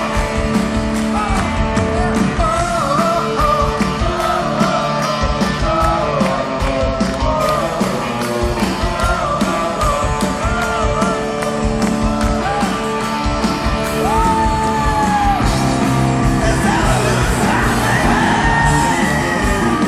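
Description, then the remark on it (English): A huge concert crowd chants together in loud, sustained unison, doing another round at the performer's urging, with whoops and cheers rising over the dense roar of voices throughout. “And he gets the crowd to do it one more time.”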